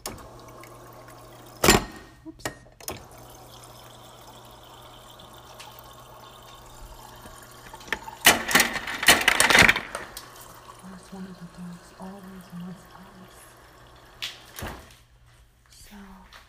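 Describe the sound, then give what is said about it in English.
Water runs from a refrigerator dispenser into a glass in a short gush lasting a second or two, with sharp clicks before and after over a low steady hum. “I'm gonna get some from the refrigerator right now.”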